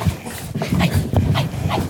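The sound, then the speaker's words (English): A dog pants in quick, breathy bursts as a man plays with it on arriving at his parents' house late one night, a steady rhythmic huffing with a few faint whiny notes mixed in. No one speaks. “He walks in, plays with the dog for a minute.”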